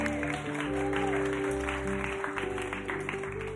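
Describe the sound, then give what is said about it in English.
A crowd claps together in a dense, steady patter of many hands, with sustained keyboard or organ chords holding underneath the whole time. “So we should clap.”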